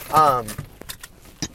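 A brief tonal chirp from the speaker's car rings out, followed by several scattered metallic clinks of jangling keys, moderately loud.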